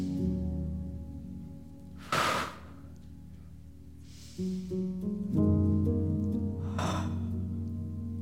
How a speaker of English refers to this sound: look at it as inhale. Okay, this is the veil. Inhale.